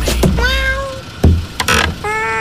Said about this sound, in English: Hey, you let some cats in. Go on, get away from them!